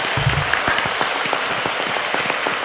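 A burst of applause, many hands clapping densely and steadily for a few seconds, fairly loud, with no talking over it.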